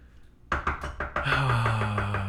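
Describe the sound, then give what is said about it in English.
A rapid series of about five firm knocks on a door breaks the silence, then a sustained droning tone rises underneath while the rhythmic knocking continues. “Someone's at the door. Should probably go answer that.”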